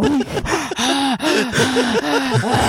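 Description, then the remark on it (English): Loud heavy breathing straight into a microphone: a quick, steady run of about eight voiced, gasping pants with no talking around them. “Breathing like that into the microphone?”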